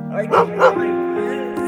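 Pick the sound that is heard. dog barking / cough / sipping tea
dog barking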